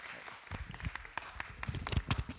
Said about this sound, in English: a round of applause and welcome him on a Sunday morning.